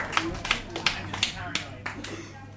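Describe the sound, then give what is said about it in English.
A short burst of applause: roughly eight slow, evenly spaced hand claps, fairly soft, over a low background murmur. “Give him a round of applause for that one.”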